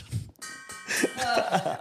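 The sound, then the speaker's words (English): A bell rings out with a bright, sustained metallic tone that hangs through the moment, moderately loud, with some faint background clatter underneath. “You've rung the bell, mate.”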